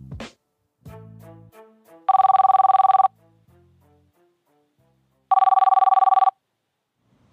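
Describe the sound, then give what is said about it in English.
A telephone rings twice before a group post-mortem phone call, in loud, buzzing bursts about a second long separated by a pause, with brief low tones and faint sounds in between, and no voices. “All right, so guys, thanks for hopping on this phone call, this post-mortem phone call.”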